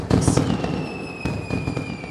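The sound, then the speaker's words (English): Fourth of July fireworks explode in a rapid cluster of loud, crackling bursts, followed by a few more booms while thin, high whistling tones hang in the air. No one speaks. “But the main thing that sticks in my mind, the memory that is the 4th of July to me, the fireworks.”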